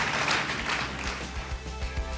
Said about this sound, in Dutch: Laten we God een applaus geven. Let's give him a great round of applause.